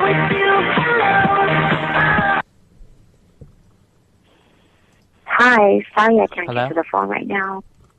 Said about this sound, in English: We had to suffer through that ringback tone.